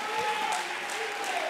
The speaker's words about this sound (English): You got to do it together. You got to raise your hands together. You got to clap your hands.